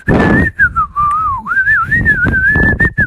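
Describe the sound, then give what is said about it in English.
A person whistles a continuous wavering tune, speeding up faster and faster, the pitch dipping and climbing smoothly, loud, with some low background noise underneath and no speech. “Everyone in the class was staring at him as he was whistling.”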